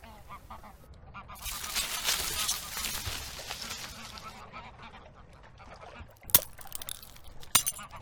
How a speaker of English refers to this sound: Damn it, I smashed my watch.